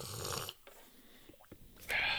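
Fizzy unflavored SodaStream sparkling water hisses in a loud burst, fades into quiet with faint crackling pops, then surges back into a bright, sharp fizz at the end. No one speaks.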